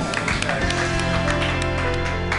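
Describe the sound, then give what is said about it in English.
A comedy show audience claps wildly for comedian Tommy Maguire, a dense, steady wash of many hands with scattered sharper claps, holding at full strength from start to finish with a faint tonal hum underneath. “All right, clap wildly for Tommy Maguire.”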